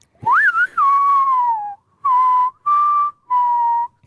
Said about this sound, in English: It's such a high pitch. I can't even do it. It's like a whistle.